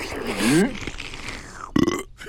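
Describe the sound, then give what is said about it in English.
A loud, drawn-out burp after a big gulp, with a low, croaky voiced tone, followed by a short pause and a brief vocal sound, with no words spoken. “Oops, pardon.”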